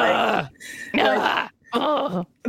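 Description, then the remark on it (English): A voice imitates effortful grunting and groaning while squeezing into jeans, three strained vocal bursts separated by short breathy pauses, loud, with no words spoken. “And I was just like, they just hear me in here grunting.”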